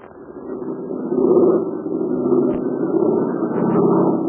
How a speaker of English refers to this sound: You hear that? That's Jude Hennig's American-made plane. And it's flying over the invaders' lines and trying to dodge a barrage of anti-aircraft fire.